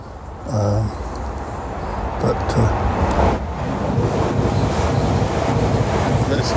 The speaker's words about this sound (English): You can hear the train. You can hear the train. The path doesn't go that far from the line.